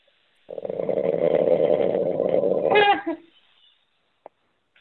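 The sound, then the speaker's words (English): A man's single long, raspy snore as he has fallen asleep, lasting a few seconds, a steady rattling drone that rises in pitch at the end before cutting off, followed by a faint click. “I think he's snoring.”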